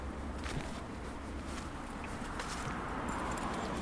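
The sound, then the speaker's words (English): A bunch of keys, including keys for the rectory in Wageningen, jangles softly in short, scattered metallic clinks over a steady background hiss, with no one talking. “I've got a lot of keys now, because I also have the keys for the rectory in Wageningen.”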